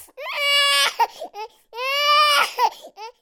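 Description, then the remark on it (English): A newborn baby boy, just born and being swaddled in a clean cloth by a midwife, cries in two long, loud, high-pitched wails, each followed by short gasping sobs and hiccuping breaths, with no other voices. “"It's a healthy baby boy," said the midwife, swaddling the screaming child in a clean cloth.”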